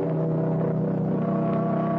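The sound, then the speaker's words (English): A steady, droning car engine hums along at a constant pitch, moderately loud, with road rumble underneath and no voices, as a car drives a passenger over to a shack about a quarter of a mile away beyond Joshua trees. “I'll drive you over.”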